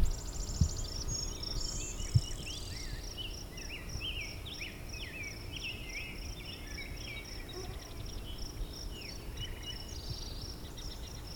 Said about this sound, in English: But yeah, it's got the core three that are singing here. Song sparrow, blue-wing warbler, and rose-breast grosbeak.